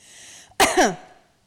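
Two quick, harsh, fairly loud coughs in close succession, preceded by a soft breathy hiss; no one speaks. The two coughs are given as a 'no' answer to a question.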